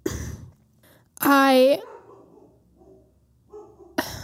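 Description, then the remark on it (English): A dog in an apartment lets out one loud, drawn-out, yelping bark, rising slightly in pitch, with a person's voice briefly heard before and after. “Sorry if you hear my dogs. They are still not used to the apartment living life yet, and every little thing they bark at.”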